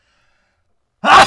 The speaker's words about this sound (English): Whoa. Son of a bitch. Bless you.